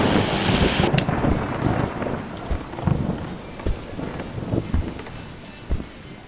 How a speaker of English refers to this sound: Just in, there will be a cold front pushing through New England, bringing heavy rains and high winds to the greater Boston area, on up to parts of Western Mass. Some say this could be the biggest storm of the year.